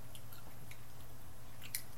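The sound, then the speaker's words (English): Quiet chewing on a tough Slim Jim meat stick, with soft wet clicks and smacks scattered over two seconds above a steady low hum; no one speaks. “Oh, man, these Slim Jims are vile. They're awful.”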